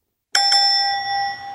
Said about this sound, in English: Is that like a fight bell? Oh, yeah. Oh, great. Why were you playing it? For fun. For no reason.